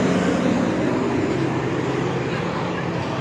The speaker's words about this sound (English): How many trucks are gonna drive by? Like, really?